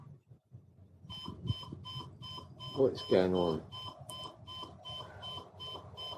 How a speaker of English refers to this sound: And so, yeah, we can hear the alarm going off. The alarm clock's going off, and the lights are just doing random things.